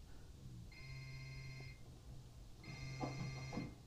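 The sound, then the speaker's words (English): A man's mobile phone rings with an electronic, tonal ringtone: two clear bursts about a second long, separated by a short pause, with no one speaking over it. “Whose phone is that?”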